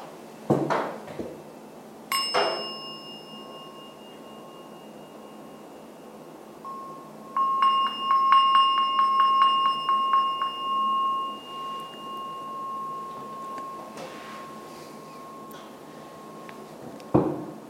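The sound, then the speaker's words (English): A gong is struck twice near the start to end a meditation, leaving a long, steady metallic hum, then a quick shimmering flurry of lighter strokes swells and fades before one final tap, with no talking. “And now I'll ring the gong to bring the meditation to an end.”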